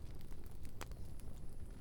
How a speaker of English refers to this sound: I hear the crackling fire out in the... Maybe it was a shifting of the logs or something. Enough to... Oh, yeah, like when the log breaks.